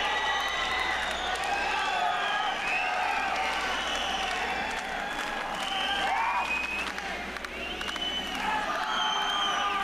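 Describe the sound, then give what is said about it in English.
A large crowd cheers and applauds continuously on a 1974 rock album recording, a dense wash of clapping with scattered whoops and shouts rising above it, loud and sustained throughout with no pauses. “So we go from that to the crowd cheering to now this haunting kind of wind noise, this howling wind.”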